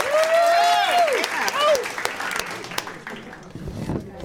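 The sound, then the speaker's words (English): A crowd claps loudly for talented performers at the end of an evening event, with scattered cheers and whoops rising over the dense patter, then the applause thins out and fades toward a few lingering claps. “Let's give another round of applause to all these talented people.”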